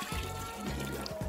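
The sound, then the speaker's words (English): Liquid sloshes and pours in a brief burst, with a steady watery trickle and a few low gulping splashes as a bath-salt mixture is scooped and tipped out for a sip. “Give me a good scoop.”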